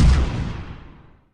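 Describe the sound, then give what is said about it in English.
A single loud cannon boom with a deep low-end blast that rolls off into a fading rumble over about a second, with no voices. “Fire Cannon!”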